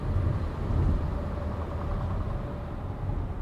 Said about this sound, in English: Well, here goes a truck, hold on.